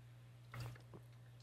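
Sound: sipping water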